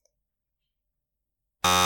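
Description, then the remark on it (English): A loud, harsh game show buzzer blares suddenly after a long silence as a player buzzes in during a quiz game, a dense rasping electronic tone that cuts in abruptly and holds steady until the end. “I am going to open the buzzer, and first one to buzz gets control of the board.”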